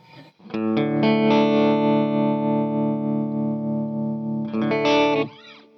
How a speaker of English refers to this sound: Now what I've done is I've just left two pedals in this particular loop. It's got the reverb pedal and a tremolo pedal in it.